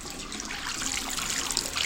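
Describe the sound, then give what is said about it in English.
A hot water tap runs steadily into a sink, producing a continuous hiss and splash of flowing water with no pauses and no voices, turned on to check that the water is not too hot. “Yeah, and turn the hot water tap on, and these should be not too hot.”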